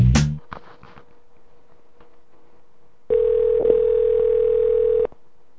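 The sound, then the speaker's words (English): A few clicks of a handset on the line, a short hush, then one steady two-second burst of telephone ringback tone, fairly loud, as if heard through the receiver. “It's ringing.”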